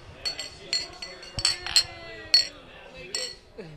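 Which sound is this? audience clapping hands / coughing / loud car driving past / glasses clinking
glasses clinking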